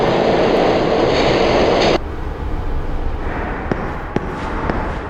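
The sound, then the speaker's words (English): Loud, rushing station noise cuts off abruptly as a train door slides shut at Yoyogi Cohen Station, leaving a quieter interior rumble broken by a few sharp clicks. “Yo, Yogi Cohen, please do not rush onto the train. The door is now closing.”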